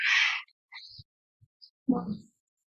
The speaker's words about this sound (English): What a terrible time to have to yawn. Jeez, I apologize.